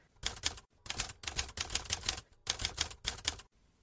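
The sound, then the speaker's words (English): Rapid mechanical typewriter keystrokes clatter in quick bursts as someone types a column, separated by brief pauses, fairly loud with no voices. “I need to snap out of it and finish typing this column”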